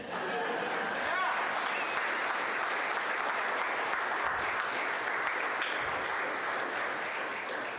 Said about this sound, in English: Yeah. That sounds like applause, and I'm going to take it.